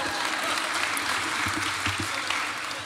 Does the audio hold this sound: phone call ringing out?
no